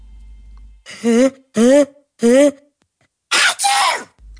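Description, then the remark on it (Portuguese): A voice imitates a big sneeze: three loud, pitched, rising build-up breaths followed by a harsh, noisy double burst as the sneeze explodes. “Plod soltou um grande espirro.”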